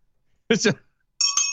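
bell ringing sound effect

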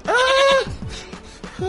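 goat bleating

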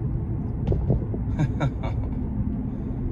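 car driving

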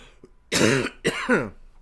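throat clearing cough

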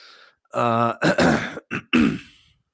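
coughing and throat clearing

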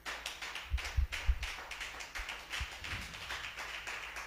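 audience clapping

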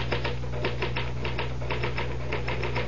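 typewriter typing

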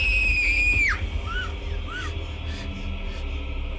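girl screaming

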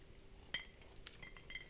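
glasses clinking

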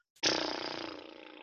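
lip trill

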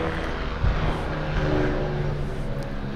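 aircraft flying overhead

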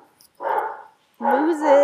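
dog barking

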